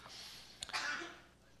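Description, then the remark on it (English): A single sneeze: a short sharp intake, then a hissy, breathy burst of air that trails off. It's fairly soft, with no talking around it. “Yeah, Gesundheit.”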